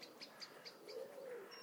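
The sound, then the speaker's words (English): Soft, low pigeon cooing swells in the middle, set among a background of faint, high bird chirps repeating at a steady pace outdoors under high, fluffy clouds, with cockerels and many pigeons about. “And there are cockerels and lots of pigeons, but not that great chorus of song.”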